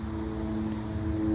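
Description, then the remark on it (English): A steady, droning airplane engine hum with a constant low tone over broad rushing noise, holding an even level throughout with no voices. “That is license plate M-U-S-K-R-T and plane engines.”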